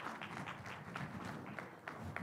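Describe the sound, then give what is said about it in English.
An audience applauds an officer steadily for a couple of seconds, a dense, fairly loud wash of many overlapping claps with a few sharper individual claps standing out. No one speaks over it. “Please give officer a big clap offer.”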